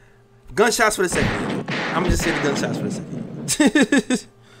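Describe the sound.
A voice imitates gunfire with rapid, punchy mouth bursts, broken by a longer stretch of loud, noisy blasting before a final quick volley of five sharp shots.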